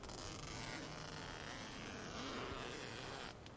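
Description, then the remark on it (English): A tent zipper is drawn open in one long, steady pull, giving a continuous rasp at low volume that stops just before the end, with no talking. “Oh, zipper sound.”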